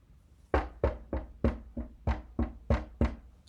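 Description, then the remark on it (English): Nine or so firm knocks on a door in a steady, even rhythm, each a sharp thud with a short decay, starting after a brief pause and with no voices. “He knocked on the door.”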